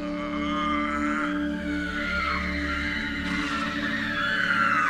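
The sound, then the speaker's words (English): A haunting, anguished murmur picked up on a sound recorder where Haymorg and Aruth were destroyed: a steady low droning hum layered with wavering, slowly sliding higher moans that persist without a break and with no speech. “All that remained in their place was a murmur of anguish, which we picked up on the sound recorder.”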